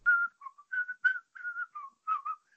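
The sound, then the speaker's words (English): A person whistles a short melodic tune from the Nacho Libre movie soundtrack, a quick series of clear, pitched notes with brief gaps, bright, with no talking. “I love the soundtrack too. I think it's dope. It's hilarious, dude. Like, I am a really religious man. It's got that whistle.”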